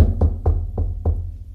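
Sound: knocking on a door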